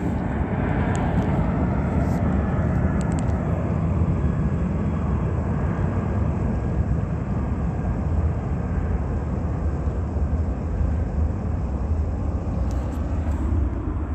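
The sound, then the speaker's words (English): An airplane flies right over a museum, its engine a loud, steady, low roar that fills the whole stretch without fading, with no voices over it. “This is the entity stalking by airplane right over the museum where I'm at.”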